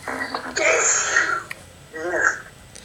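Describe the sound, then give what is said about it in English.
A loud sneeze bursts out with a breathy, noisy rush, followed a moment later by a shorter, strained vocal sound like a second sneeze or sniff. “Then, that's my sneeze.”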